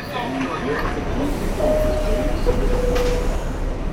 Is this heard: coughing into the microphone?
no